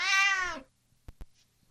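A single drawn-out meow from Chairman Meow, the show's mascot cat, loud, sliding down in pitch, followed by two short sharp taps and then quiet.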